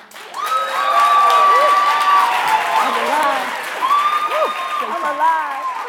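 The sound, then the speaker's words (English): Loud, sustained applause from a large audience fills the whole stretch, with enthusiastic cheers, whoops and shouted voices rising over the steady clapping. “I don't know if she had a larger turnout to support her, but if I remember right, at the end, there was this huge, loud applause.”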